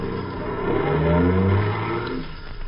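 A taxi engine revs up and accelerates away, its low harmonic tones rising steadily in pitch, loud, then easing off as it settles into a cruising hum.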